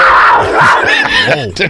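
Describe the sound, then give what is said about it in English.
A loud, raspy big-cat roar, like a tiger or cougar, with a rough growling tone that rises and falls in pitch over a bit under two seconds, heard on its own. “Was that a tiger? That was like a cougar, but who cares?”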